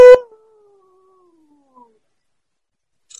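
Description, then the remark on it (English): A person gives a ghoulish howl, opening with a loud, harsh burst that thins into a long, faint tone sliding slowly downward before fading, followed by a couple of brief soft noises. “We lose the middle of your glorious ghouly howl.”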